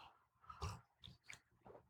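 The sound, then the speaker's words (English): Wet mouth sounds of someone sipping coffee, a few short slurps and swallows spread over a couple of seconds with no talking. “I'm going to sip this coffee real quick.”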